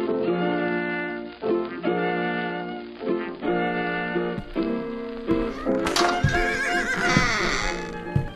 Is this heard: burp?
no